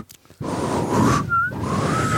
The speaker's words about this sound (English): Like, I can do real soft. Can't even do it. This is me trying to whistle.